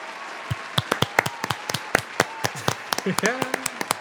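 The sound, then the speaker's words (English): Scattered, uneven hand clapping at the We Love That Awards show after award recipients are announced, sharp separate claps rather than a dense roar, with a brief excited vocal cry rising near the end. “A huge round of applause. The crowd is really going wild here at the We Love That Award show.”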